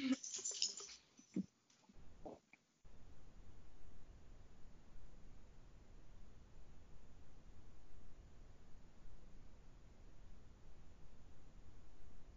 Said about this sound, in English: Just so everyone knows, my dogs are playing, but I feel like the grandma should take it a little easier than what she's doing right now.